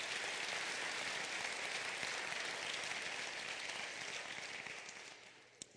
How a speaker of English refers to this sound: And I want to thank our great choir. Let's give the Lord a hand clap for all of you.